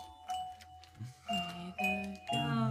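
A doorbell chime rings out in three clear, ringing tones that step one after another and sustain over a faint steady background hum, with no talking.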